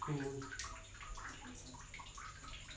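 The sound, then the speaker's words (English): Hot water runs steadily from a tap, a continuous rushing splash lasting the whole stretch, with a brief murmur of a voice at the start. “There you go, that was the hot water.”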